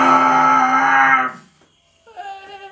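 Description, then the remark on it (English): A voice imitates a slightly quieter, higher-pitched T-Rex-style roar coming from a little way off, a loud, harmonic, strained howl held for over a second, then after a brief pause a quieter, wavering cry trails off. “Like a slightly quieter, higher pitched T-Rex style roar.”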